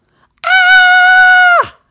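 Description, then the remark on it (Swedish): A single loud, high-pitched scream held steady for just over a second, then sliding sharply downward as it cuts off, with no other voices around it; a boy screams as he pulls open a garage door, and the scream is heard throughout the whole neighbourhood. “Skriket hördes i hela kvarteret.”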